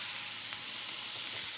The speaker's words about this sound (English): We throw the greens into the pan with the onions and the garlic, and I'm just gonna stir them around until they're soft.